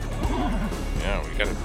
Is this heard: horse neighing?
yes